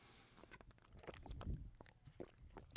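Quiet mouth sounds of someone sipping a protein shake: small wet clicks and smacks, with a soft gulp near the middle, and no talking.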